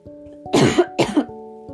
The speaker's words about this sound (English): Sorry, I need to cough.